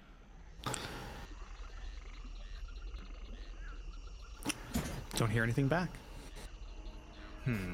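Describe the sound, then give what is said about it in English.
Steady swamp ambience by a raised shack with a dock: frogs croak and crickets chirr in a dense, continuous bed of sound, with a few sharp bursts. A voice briefly speaks over the chorus. “Just in the swamp.”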